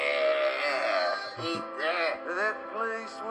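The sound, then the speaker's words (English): A voice wails and moans wordlessly into a toilet bowl, echoing hollowly, with long sliding tones that rise and fall several times at a steady, fairly loud level. “Gotta admit, the echo you're hearing there is,”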